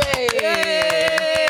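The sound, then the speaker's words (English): Scattered, uneven hand clapping: about a dozen sharp claps at irregular intervals, never settling into a rhythm, over a steady sustained tone underneath. “That was a sad attempt at clapping, guys.”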